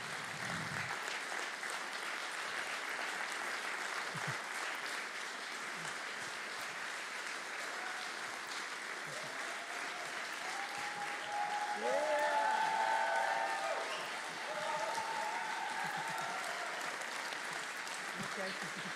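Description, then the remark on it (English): Sustained audience applause as two guests are welcomed onto a stage, a dense steady wash of many hands clapping at an even loudness, with a few indistinct voices and cheers rising briefly through it. “We could clap all morning, couldn't we?”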